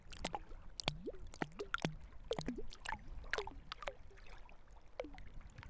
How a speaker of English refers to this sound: That's the musical sound of the Waiau River. And we're just down by the banks, standing on the limestone that lines it here near the Clifton Suspension Bridge.